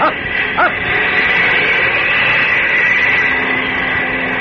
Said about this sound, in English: It's a plane, all right.